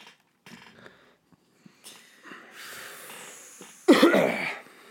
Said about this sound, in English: Fucking, I'm gonna have to go in and edit all these loud ass coughs. Probably. Are they? Is it peaking? Yeah, peaking. It's peaking. You're making it peak.